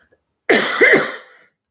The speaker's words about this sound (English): Excuse me, cough going on here.